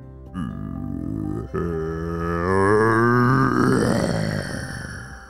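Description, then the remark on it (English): A deep, guttural monster growl made by a human voice, pouring out from the ground of a beach as it shakes and a sandcastle monster emerges; starting low, breaking off briefly, then swelling louder and rougher for several seconds before trailing off. “As the ground shook and that growl poured out from the ground, he saw it.”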